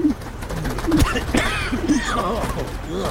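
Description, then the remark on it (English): Several low, throaty pigeon coos repeat in short bursts, while higher bird chirps and a busy outdoor background fill in around them. “But we give the pigeon grudging respect for being so adaptive to its urban surroundings.”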